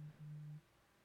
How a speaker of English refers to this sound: Sorry, my phone's blowing up right now.